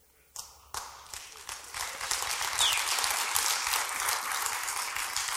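A few scattered claps start things off, then quickly swell into a steady, full round of applause from a crowd that keeps going at an even level.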